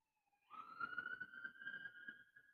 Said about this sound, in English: You'll have to excuse me. I'm close to the downtown area, and we get the sirens, and because this is the main strip, and then we get those knuckleheads and the Hellcat chargers going through here,